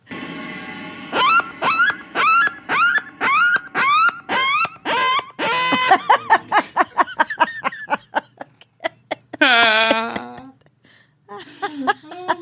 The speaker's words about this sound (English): That sounds like a donkey mating call. I've never heard a coyote make that kind of noise. What kind of coyotes I got where you live?